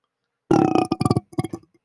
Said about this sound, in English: Ooh. Ooh. That was an echoey deep one. That was a different burp. I like that one. That's what Modelo does to you, bro.